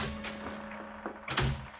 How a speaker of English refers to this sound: At 10 o'clock that night, there was a rap on my cabin door.